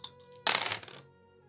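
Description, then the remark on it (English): Three dice rattle and tumble across a hard tabletop for a saving throw in a quick burst of bright clicks, preceded by a few lighter taps, then settle into quiet with a faint steady hum beneath. “So you have to roll less than 13 with all your dice?”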